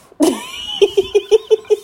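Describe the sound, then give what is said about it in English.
Cat fighting noises: a sharp hissing yowl bursts out, then six short, evenly spaced growling cries follow in a quick, steady rhythm, fairly loud with no talking. “He's having a cat fight with the cat right now.”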